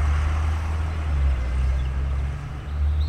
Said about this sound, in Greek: Γιατί μόλις τώρα έστριψε ένα πολύ ύποπτο αμάξι στη γωνία.